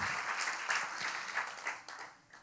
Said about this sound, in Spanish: Este aplauso estuvo muy bajito, si se lo vas a dar a él, dáselo con fuerza. al Dios Todopoderoso es el que estamos aplaudiendo en este día.